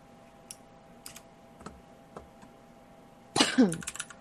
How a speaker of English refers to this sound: I can see the typing. Yep. We can all hear the typing.